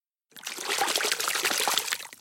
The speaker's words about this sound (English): So before we get into our story for the day, I think we need to listen for our sound search. So our sound search today is a fish splash.